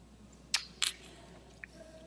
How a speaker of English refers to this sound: And it says crisp and dark with hints of cocoa, so we'll say cheers, take a sip of the Samuel Adams Black Lager.